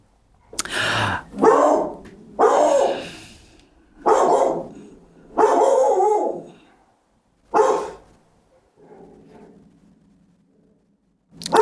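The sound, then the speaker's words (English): A dog barks loudly at a bigger dog across the park in a series of about six sharp, spaced barks, followed by a quieter whine or low growl before one last bark starts at the end. “She's barking at a bigger dog across in the park.”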